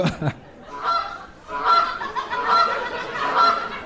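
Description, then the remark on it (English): A goose honks four times in a steady rhythm, each call a loud, nasal, buzzy blast, with a short burst of noise right at the start. “You were close. That was a goose.”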